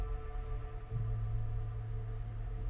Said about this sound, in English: And what about this? A dryer. Oh, this one's always a bit of a tricky one.